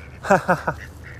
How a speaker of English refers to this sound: Oh, look, the Ducks are coming to take my Starbucks cup.